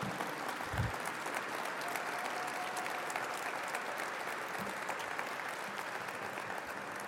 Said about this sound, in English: And for a moment, if you would, please a big round of applause for those folks. And they are all around here.